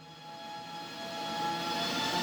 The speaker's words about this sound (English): He had his computer. That buzzing sound? Yeah, that's his server. Okay, it looks like it's running.